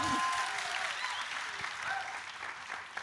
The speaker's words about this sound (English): And we can clap for Deadwood if we want to. Woo!